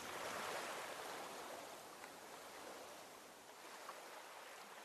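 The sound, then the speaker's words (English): Soft, steady wash of the ocean tide lapping gently, a quiet, regular, continuous hushed surge with slight swells in loudness, unaccompanied by any voices. “Watch the light on the rippling of the water, and let the quiet, regular sound of the tide rock you sleep.”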